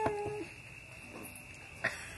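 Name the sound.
dog barking and whining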